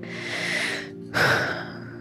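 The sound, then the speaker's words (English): A slow, deep breath drawn in during a breathing exercise, a brief pause, then a long, audible exhale. No one speaks. “We're breathing in new ideas and new thoughts and new everything, and we're breathing out all of the tenseness that comes with holding ourselves to standards that we would never hold anyone else to.”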